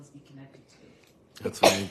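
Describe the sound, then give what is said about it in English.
A person talks quietly, then a single sudden, loud sneeze bursts out near the end, much louder than the speech before it. “Bless you.”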